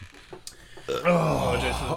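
A single long, loud belch after a quick chug of beer rumbles out after a near-silent start and drags on for about a second.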